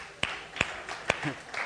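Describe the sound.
A few scattered hand claps from a church audience answering a question about funky family Christmas traditions, three sharp separate slaps spaced unevenly over a couple of seconds, with faint murmuring voices between them rather than full sustained applause.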